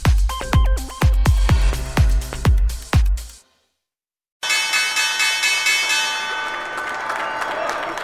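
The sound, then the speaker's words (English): A loud U.S. stock exchange opening bell rings in a rapid series of strokes on a Wednesday as DoorDash makes its market debut, stops abruptly, and after a brief silence a crowd breaks into sustained applause and cheering. “stocks are up and running this Wednesday, and as you can see there from the opening bell, there is so much excitement as DoorDash makes its debut.”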